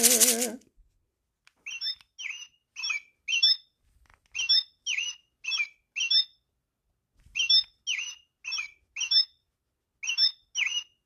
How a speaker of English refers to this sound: I hear a bird.